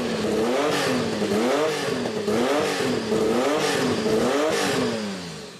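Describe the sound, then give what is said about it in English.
A sequentially twin-turbocharged dual overhead cam flat-six car engine revs up and down in a steady rhythm, its pitch rising and falling about five times. It sounds loud, with no voices. “The engine is a sequentially twin-turbocharged dual overhead cam flat six.”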